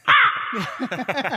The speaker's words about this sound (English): you know what this needs? A bit of crow.